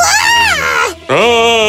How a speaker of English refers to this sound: But just then, the Princess Lana's maid walked into her room, and seeing the genie, she screamed out loud.